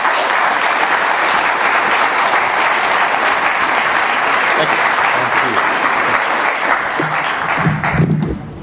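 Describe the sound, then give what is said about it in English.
An audience gives a quick round of applause as a speaker is introduced, a steady, loud round of clapping that holds for several seconds, a dense wash of many hands with no voices standing out. “And with that, I'd like a quick round of applause as we introduce Chuck.”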